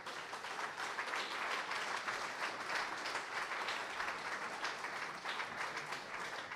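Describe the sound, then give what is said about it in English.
An audience applauds steadily after a poetry reading, many hands clapping in a dense, even patter that holds at a fairly strong level throughout, with no voices over it. “Poets are always willing to welcome applause because it's so rare, but hope the applause that has occurred tonight and the applause that will occur the rest of this evening will take it all and offer it up”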